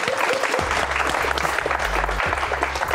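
A burst of audience applause, many hands clapping in a dense, steady wash of crackling noise throughout, with a low tonal hum underneath and no voices.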